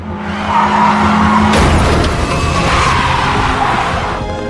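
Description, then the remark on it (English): A car's tires screech in a sustained skid as Maura Murray crashes her car, then a sudden loud crash hits around the midpoint, followed by crunching debris and scraping as the noise carries on loud before fading. “she crashes.”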